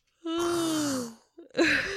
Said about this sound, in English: The yawn mixed with it.